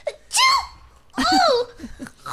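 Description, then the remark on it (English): During a tabletop role-playing game, a person fakes a sneeze with their voice for a character whose nose is tickled by a flower: a rising, breathy intake followed after a short pause by a loud, drawn-out burst. “Gesundheit. What's the recoil in that sneeze?”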